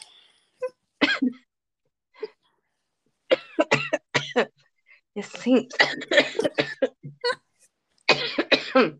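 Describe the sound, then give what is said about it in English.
A series of loud coughs in irregular bursts, some short and sharp, others longer and raspy, with brief pauses between fits and some voiced sounds mixed in. “It seems so fucking real right now, though.”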